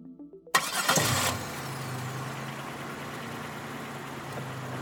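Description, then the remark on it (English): A car engine cranks briefly and catches with a loud burst, then settles into a steady, low idle rumble. No one speaks. “I got back in my car and decided to pay a little visit to the Prime”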